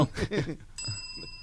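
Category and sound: signal or alarm, bicycle bell ringing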